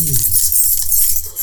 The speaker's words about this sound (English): I've got some keys.